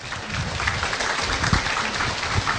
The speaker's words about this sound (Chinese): 好，谢谢索达吉堪布，我们今天晚上的互动交流就到这里。 让我们再一次以掌声感谢堪布。